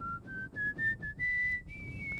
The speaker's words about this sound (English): That was a little Wayne's World throwback for you. Was that Wayne's World? That sounded more Star Trek-y to me. It is, but remember when they're sitting in the car in Wayne's World and he whistles?